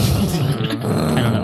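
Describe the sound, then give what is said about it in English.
A voice imitates a tinted Dodge Charger slowly revving its engine out on the street, a low, steady, growling rumble that swells slightly, continuous for just over a second with no words. “We see outside on the street, there's like a tinted Dodge Charger that's just like slowly revving its engine.”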